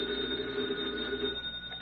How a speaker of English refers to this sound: Meanwhile, at a nearby FBI field office, Special Agent Taylor is returning from the file room when his phone rings.